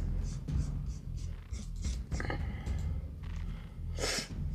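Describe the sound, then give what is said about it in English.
Dry scratching and scraping as wet 28-pound paper is rubbed off a plaque in a series of short, uneven strokes, over a steady low hum, with one louder scrape near the end. “Paper's starting to come off a little bit, too.”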